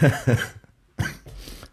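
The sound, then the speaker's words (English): Two quick coughs, a short pause, then a rougher, chesty cough trailing into a breathy rasp, from a person with a lingering cold in the chest. Loud, with no talking. “Talk about coughs, you can tell I still got a little bit of a residual cold kicking through my chest at the moment.”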